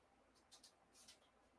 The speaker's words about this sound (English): When I click around the mouse, I try to mute so we don't hear clicking all the time. But whatever, you can hear some clicking.